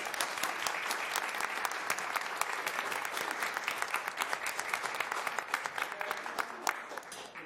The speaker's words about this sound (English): And let's do a round of applause.